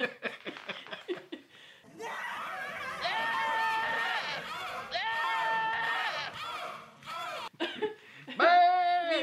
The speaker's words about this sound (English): It sounds like a yelling goat. Splice in the goat.